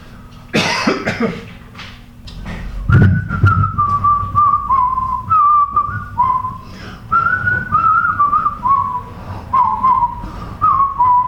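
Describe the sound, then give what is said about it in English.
After a couple of coughs, someone whistles a cheerful, bouncy tune, the melody stepping up and down in short phrases for several seconds. “And as he was working, as he was walking to work with his shovel over his shoulder, he was just so happy and carefree that he was whistling a happy tune.”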